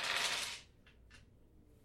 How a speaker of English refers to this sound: Oh, flinging dice. So it's just one purple for you to see what he's doing.